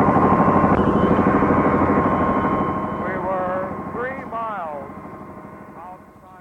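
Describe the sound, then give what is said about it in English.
A loud, steady helicopter engine roar fills the scene, easing slightly as the helicopter comes in to land in a landing area, with muffled voices briefly audible over the drone. “We hope it'll land, otherwise we can't get on.”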